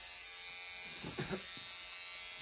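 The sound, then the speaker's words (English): A steady electric beard trimmer buzz hums continuously while trimming a beard, with a brief change in tone around the middle as it moves against something, then settles back into the even drone. “So as you can hear, that's the buzzing of the trimmers is...”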